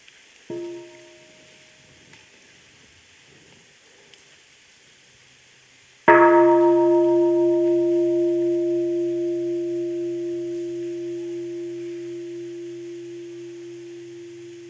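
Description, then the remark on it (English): A mindfulness bell is tapped softly once, then struck fully a few seconds later, its clear, steady tone ringing out and slowly fading over many seconds, with no one speaking. “So dear Sangha, let us breathe with the sound of the bell before we ask the first question.”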